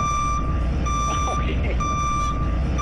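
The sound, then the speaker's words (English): A vehicle's reversing alarm gives three long, steady, high-pitched beeps separated by short gaps, loud over a low rumbling background with faint voices underneath. “And judging from the size of your jeans, when you back up, this is the sound it makes.”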